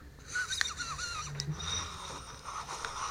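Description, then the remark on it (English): Someone draws on a Honey Farm vape pen, a thin, wheezy airflow with wavering whistle-like tones that lasts about three seconds, broken by a few small clicks. No one speaks. “But let's go ahead and hit these pens to start us off.”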